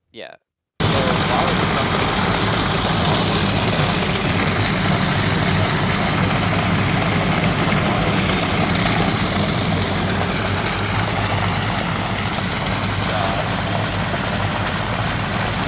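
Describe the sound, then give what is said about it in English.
A heavy semi truck engine runs loud with a steady, low rumbling drone while the truck dumps water into a pool, and a broad rushing hiss like water pouring runs alongside it. The sound starts abruptly and holds constant. “3 semi trucks of water.”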